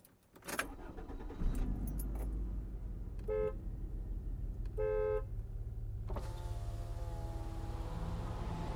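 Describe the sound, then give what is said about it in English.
A car engine rumbles as the vehicle pulls up, two short horn toots ring out, then a steady electric whir follows as a window rolls down over the idling motor. “Hey, want a lift? Really? Yeah, get in.”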